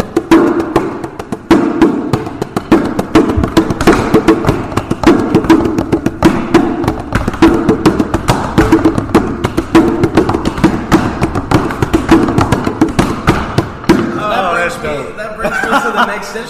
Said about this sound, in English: I'm actually sitting on it right now. I brought my own chair today. This is what's called a cajon. Okay, and this comes from Brazilian culture. Obviously, this is not a Brazilian cajon.